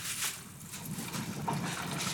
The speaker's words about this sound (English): Oh my God. As a foreigner, I didn't know water can come out of your fridge.